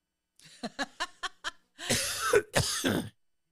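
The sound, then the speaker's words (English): A run of quick, short throat-clearing hitches leads into two heavy, harsh coughs, loud, with no talking. “I'm fixing to cough.”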